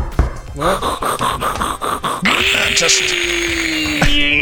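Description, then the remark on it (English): A man's voice imitates a power drill, starting with short rhythmic bursts like a trigger being pulsed, then rising into a steady, sustained whirring whine held for a couple of seconds. “I love your drill noise.”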